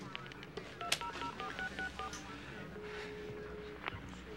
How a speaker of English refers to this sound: Yeah, so he takes the phone out of the evidence bag, out of the evidence box, and plugs it back in and hits automatic redial